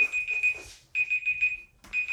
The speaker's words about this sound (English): You ever have a timer go off? Hold on. The timer went off. Hold on. Hold on. Be right back. Okay, I turned the timer off.